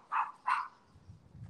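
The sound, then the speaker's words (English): Two quick, sharp dog barks sound in succession, moderately loud, followed by a low rumbling background noise. “Is that – you have a dog?”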